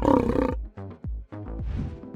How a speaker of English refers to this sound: So, that's not really a lion behind you.